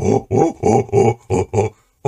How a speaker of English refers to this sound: In the corridors beyond, somewhere off to the north, you hear a disturbing simian hooting. Fucking baboons.